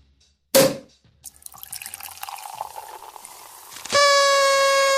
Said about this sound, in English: That's the champagne pouring. Isn't that good? What a great sound effect that is.